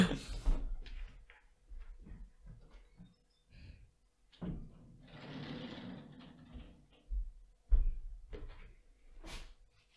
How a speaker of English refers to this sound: Actually, let me close that toilet door. This is making a lot of noise after I flushed it.